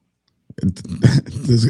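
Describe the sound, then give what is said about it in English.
After a moment of silence, someone clears their throat with a few rough, voiced rasps and a short cough-like burst in the middle. “I try to clear my throat before you guys bring me live, and as soon as I go to say my first words, it's like the devil's like, hey, I'm going to make you cough”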